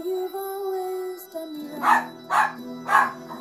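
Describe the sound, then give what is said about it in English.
A dog barks three times in quick succession, loud, over a steady humming tonal background like faint music; no one speaks. “Sherman Eric says hi. He'll bark at you in a minute.”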